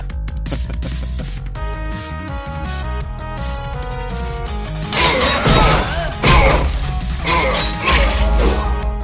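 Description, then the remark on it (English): Hack-and-slash sounds from the video game Final Fantasy 15, King's Tale: a run of sharp, loud smashes and metallic whacks over a tonal musical background, growing into dense, noisy crashes in the second half. “All right, got some hack and slash noises, some...”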